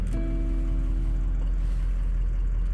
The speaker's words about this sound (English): Can you hear the rumbling of our big farm truck? It's a diesel engine. That's why it makes that big rumbling sound.